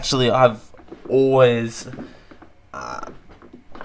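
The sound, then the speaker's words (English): A chair squeaks and creaks, two loud drawn-out squeals with wavering, rising pitch, followed by a softer, rougher creak a moment later. “Oh my god, this chair. Something about this chair today.”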